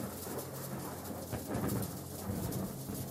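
A low, muffled crump of thunder, coming seconds after a lightning flash, rolls beneath a steady hiss of falling rain, the rumble swelling briefly midway and fading back into the downpour; no voices.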